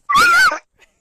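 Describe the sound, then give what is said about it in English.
A dog lets out a single short, high, whiny yelp while playfully attacking its owner, followed by a faint little squeak, with no talking. “sorry, my dog is attacking me.”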